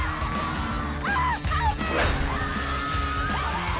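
dog barking

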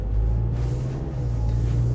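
car interior rumble

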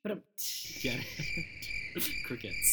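crickets chirping

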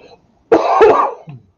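cough

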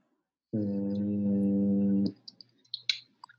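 person humming

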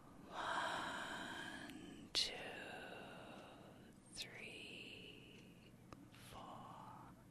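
slow deep exhale

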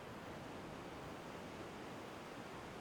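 ocean waves

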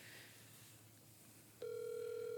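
phone ringtone

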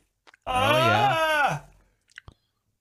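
yawning

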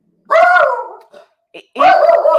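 dog barking

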